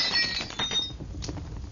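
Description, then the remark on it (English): A glass lamp is smashed onto torn paper and scattered straw with a sharp crash, bright tinkling shards ringing out at first, then a rougher scattering rustle of debris settling for a moment afterward. “I grabbed the lamp and smashed it onto the torn paper and scattered straw.”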